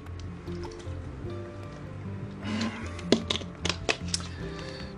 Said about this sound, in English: I have to take a sip of water.